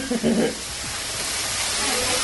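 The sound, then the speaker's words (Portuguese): A hamburger sizzles steadily in a pan, a continuous crackling hiss that stays even throughout. A brief voice sounds at the very start. “Esse barulho de ficar fritando é um hambúrguer?”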